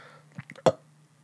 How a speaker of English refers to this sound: There we go. There's the real burp. Like, right into the mic. Sorry, folks.